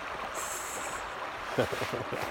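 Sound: creek water flowing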